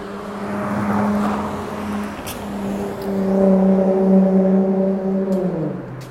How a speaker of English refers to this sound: Car just went by with no headlights. The car behind them had no muffler and something dragging on the, I think the muffler was dragging on the ground and shooting out sparks as well. So that's, welcome to Central Los Angeles